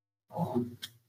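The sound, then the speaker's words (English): A male dog that wants to be let inside gives one rough, drawn-out vocal cry lasting under a second, low and growly with a brief sharper catch near the end, heard alone with no talking. “My dog, y'all can hear my dog right now.”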